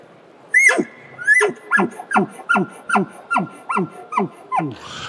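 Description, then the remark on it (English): A sharp elk bark opens, followed by a rapid series of about nine guttural chuckles in a steady rhythm, loud, with no talking. “Bark chuckle.”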